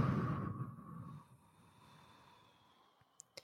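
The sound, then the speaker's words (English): A deep, breathy rush of air, fairly soft, swelling at the start and fading out within about a second, followed by quiet and a couple of faint clicks: a breathing exercise, a deep sniffing breath in then a blowing breath out. No one speaks. “If you're explaining this to a child for the first time, you can say, you can take a deep breath in like you're sniffing a flower.”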